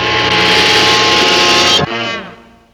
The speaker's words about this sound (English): They got real loud and then one horn honk. I just had to keep that in there. It's kind of painful. It was intense.